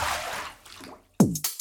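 A hiss of running water fades out, followed by two loud water drips, each a resonant plop with a quick downward pitch bend, the second coming right after the first, played as the sound effect introducing the Bird Feed Leak of the Week segment.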